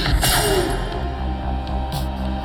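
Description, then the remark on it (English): Glass shatters in a sharp, bright crash near the start, followed later by a second brief burst, both layered over a dense, steady low rumble. “Sound of glass shattering.”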